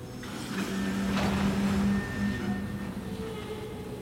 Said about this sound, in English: Spotting it too, Mills does what any train driver would do and slows to a stop.